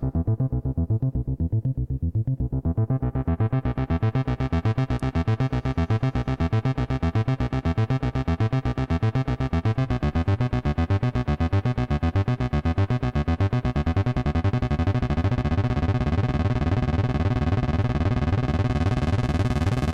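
A sustained, buzzy synthesizer chord, latched so no keys are held, pulses steadily on its own while a filter sweep gradually opens it from a muffled, dark tone into a bright, harsh, fizzing sound, loud throughout.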